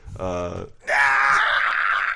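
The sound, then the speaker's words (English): The male character death scream from the video game Deus Ex, used for every male death in the game: a short, deep groan followed by a louder, strained, raspy yell that holds for over a second, alone with no other sounds. “One choice sound was the death scream in Deus Ex, which still makes me crack up to this day.”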